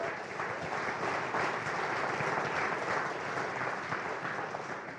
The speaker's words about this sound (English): Yeah, that's a good, come on, if you're going to clap, let's clap.